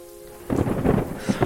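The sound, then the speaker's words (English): Freezing sleet pours down at the end of November, starting to turn into ice and snow on the ground, in a dense, steady patter and hiss that swells in after a brief low hum, loud and continuous, with no one speaking. “It's the end of November, and this is just a freezing sleet that's coming down, and it does look like it is actually starting to turn into ice and snow once it hits the ground around you.”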